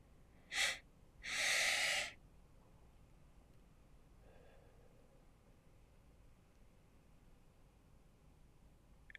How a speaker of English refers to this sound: the way this works is you're going to inhale twice through your nose as much as you can and exhale through your mouth. We want to focus on breathing through our diaphragm.